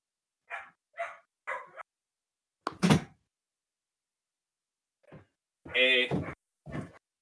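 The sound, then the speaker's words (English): A newly arrived dog in the house barks three times in quick succession, then a door thuds shut as someone closes it, followed a few seconds later by a couple more louder, muffled barks. “I'm going to have to close this door here because we have a new addition, Rogue, to the house, which makes a lot of noise”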